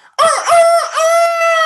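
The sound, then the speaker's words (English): A person's voice imitates a rooster crowing: one loud cock-a-doodle-doo lasting under two seconds, with a rising opening and a long, held, slightly wavering final note, and no other talking. “That's a world-class crow.”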